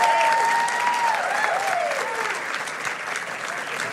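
Applause from a large church audience clapping for the money given to the church's outreach projects, a steady dense patter of many hands clapping at once, loud and sustained for several seconds with a faint tonal sound drifting underneath.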